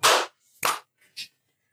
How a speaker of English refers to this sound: You guys ready to clap? Yeah. All right, on 1, 3, 2.